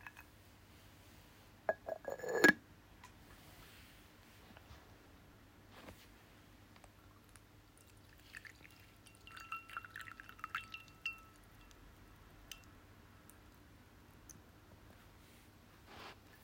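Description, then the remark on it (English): Quiet clinks of ceramic teaware being set down and moved as someone pours themselves a bowl of tea, with a brief trickle of pouring liquid and a few soft taps over a low, steady background hum. “So I'm going to pour myself another bowl of tea.”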